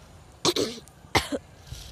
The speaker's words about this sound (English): And since I'm also having some cough and cold, half of my time went by clearing my throat and coughing.